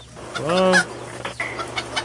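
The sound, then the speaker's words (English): A chicken lets out one loud, drawn-out squawking cluck, followed by a few softer, scattered clucks and rustles, with no talking. “I got a whole truck of chickens here.”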